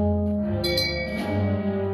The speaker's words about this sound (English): You're getting the bell. Shame.